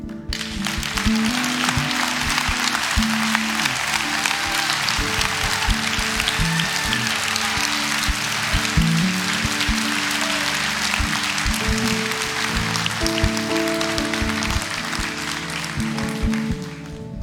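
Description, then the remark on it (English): A large crowd claps steadily and continuously for people who have stood to commit their lives in faith, dense applause at full loudness throughout, with faint scattered voices mixed underneath. “Clapping because we've made that same decision and we see how valuable it is, and we're happy and excited for you.”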